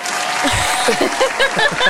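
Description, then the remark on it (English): A crowd bursts into cheering and applause, a dense, steady wash of clapping with scattered whoops and shouts rising over it for a couple of seconds. “No, and the crowd goes wild.”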